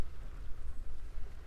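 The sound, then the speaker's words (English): Heavy rain pounds steadily on a camper van at night on Halloween, a dense hissing wash with a deep rumbling undertone that swells and dips slightly in loudness. No voices are heard. “I am in my camper van and I am recording whilst it is raining dogs and cats, meaning it is raining like crazy.”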